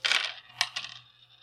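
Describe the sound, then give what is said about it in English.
Dice rattle and clatter across a tabletop, a quick burst of clicks followed by a couple of separate knocks as they settle, with no one speaking. “I did not roll wonderfully.”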